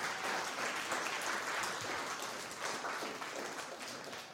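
Sustained audience applause, a dense wash of many hands clapping at steady loudness, fading slightly toward the end with no voices over it.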